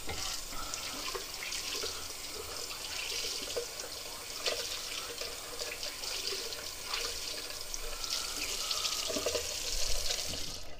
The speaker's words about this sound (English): Okay, hold on. Running water for a second. I apologize.